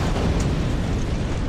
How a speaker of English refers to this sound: And an explosion in that right engine on the Boeing 777.